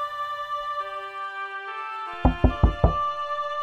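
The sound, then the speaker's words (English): Four firm knocks on a wooden door by a captain, in a quick, even rhythm and distinct, following a sustained musical drone with no voices present. “And the Wraith kept talking to himself and calling out to the Will of the Woods, hoping to muster the courage he needed, until at last the captain knocked on the door.”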